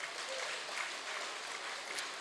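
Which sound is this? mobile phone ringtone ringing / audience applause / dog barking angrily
audience applause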